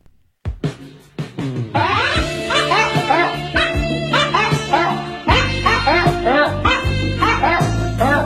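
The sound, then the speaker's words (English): A song built from dog barks and yips arranged into a bouncy melody over a steady beat, the barks pitched up and down in quick rhythmic phrases that repeat throughout. “And now you get the dog song.”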